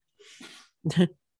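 A single sneeze: a soft, breathy intake followed by a short, forceful burst, heard up close with no talking around it.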